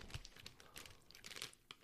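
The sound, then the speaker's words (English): Dry crunching and crackling in quick irregular bursts as a crispy Cheesies cheese snack from a bag is chewed, with no voices over it. “It's got a nice crunch to it.”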